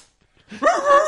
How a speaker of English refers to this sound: Then we have another guest here. Not a character. There's a dog in the room. Hadley. Named Hadley.